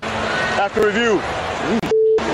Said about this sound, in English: So you heard the beep in there. Oops. I think he started to talk and didn't think his mic is on and then cursed and then realized it was.